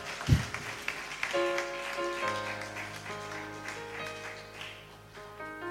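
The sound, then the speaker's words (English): An audience claps for the pastor in a steady, dense wash of applause while sustained keyboard chords ring underneath, with a single low thump near the start. “Then let's clap for Pastor”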